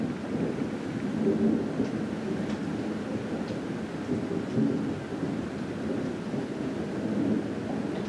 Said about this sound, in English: That thunder was long. That's why we're not outside today.